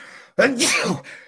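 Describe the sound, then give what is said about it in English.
A single sharp sneeze bursts out after a brief pause, a quick voiced intake followed by a hissy, explosive release, with a faint background hum on either side. “Bless you.”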